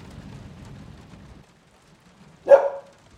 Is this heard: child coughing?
no